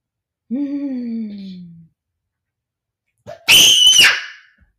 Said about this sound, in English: Why are you screaming? You're hurting my ears.